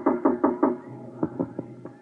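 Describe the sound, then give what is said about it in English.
Two sets of knocks on an office door, four quick raps, a short pause, then four more slightly spaced raps, solid, with no one speaking. “There was a knock on my door.”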